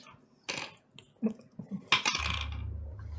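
Glasses clink together once in a toast, a bright, ringing chime, preceded by a softer clatter and followed by a steady low hum.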